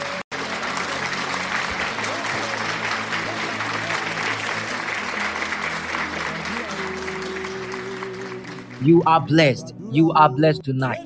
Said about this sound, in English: Yes. Somebody clap for Jesus. Clap for Jesus. But make sure you don't stop unless Satan will make mess of you. Somebody clap for Jesus.